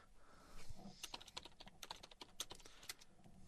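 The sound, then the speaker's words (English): Rapid, irregular clicking of computer keyboard keys as someone types in a Skype chat, a dense flurry of sharp taps with no voices present. “I heard you typing.”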